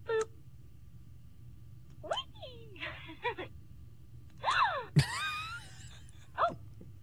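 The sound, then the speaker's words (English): A toy doll, set off by pushing a button on its body, lets out a string of short, breathy gasping sounds, about half a dozen quick bursts with rising and falling pitch, over a low steady hum, no talking. “Like a gasping sound.”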